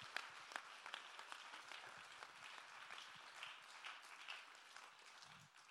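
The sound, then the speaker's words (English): A crowd claps hands together in praise to God, sustained, dense applause, many overlapping claps blending into a steady wash that holds for several seconds at even loudness. “Clap your hands and give God the praise.”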